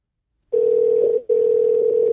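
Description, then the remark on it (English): A loud, steady electronic Skype call ringing tone that starts abruptly, cuts out for a split second, then resumes and holds, with no voices present. “There we go. It's ringing. Hopefully the guy answers.”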